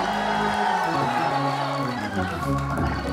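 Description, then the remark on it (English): An audience shouts and cheers together, a loud, continuous wash of many overlapping voices lasting several seconds with no break, backed by steady sustained tones underneath. “Somebody that doesn't have more prosperity than you know what to do with ought to get to shouting right now.”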